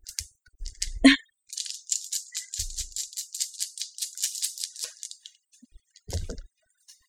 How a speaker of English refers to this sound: Ghost die fell off the table.